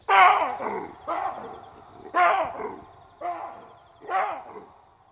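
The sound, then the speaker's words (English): An enormous male baboon barks five times in a steady series about a second apart as it charges across a yard at night, each call a loud, harsh, guttural burst that trails off, with no talking. “It let out a series of blood-curdling barks, baring its hideous fangs, its eyes white and terrifying as it bore down on us.”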